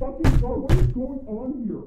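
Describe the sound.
Two loud, heavy bangs on a door in quick succession, close by and forceful like pounding with a fist, with a voice carrying on underneath and after.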